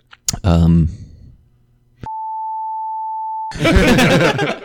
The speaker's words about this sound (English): That made it sound like you, like, already bleeped it out.